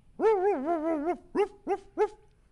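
A dog lets out a long, wavering whine followed by three short, sharp barks in quick succession, with no talking over it.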